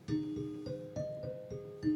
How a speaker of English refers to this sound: I have some genuine Deegan manufactured equipment. And so there is a Deegan dinner chime, which started out being used to announce dinner.